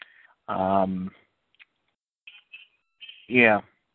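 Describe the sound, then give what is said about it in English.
A mobile phone game notification goes off: two short, bright, voice-like tonal bursts a few seconds apart, the second rising in pitch, with faint little ticks in between. “The Simpsons game on my phone just chimed in my comments”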